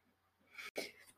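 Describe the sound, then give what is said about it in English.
One sneeze: a short, hissy intake of breath, a brief catch, then a sharp, breathy burst. It is fairly quiet overall, with no talking around it. “and sorry, I have to sneeze.”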